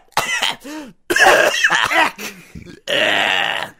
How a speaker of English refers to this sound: Wow, Jontron. John, are you okay? John, it sounds like you're choking. Is that Jock the bird? It's Jock.